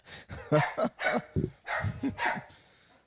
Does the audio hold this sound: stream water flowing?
no